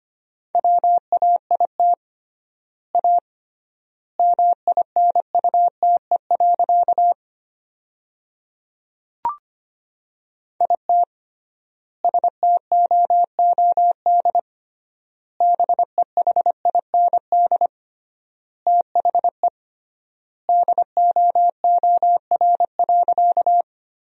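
Fast Morse code at 25 words per minute in a single steady mid-pitched tone, keyed in quick dots and dashes, sending sentences built from the top 500 words, with triple word spacing leaving long silent gaps between words, one brief click partway through and no voices.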